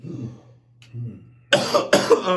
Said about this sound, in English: Sorry, that cough caught me late.